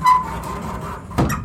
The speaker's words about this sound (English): That's my squeaky 50-year-old closet door.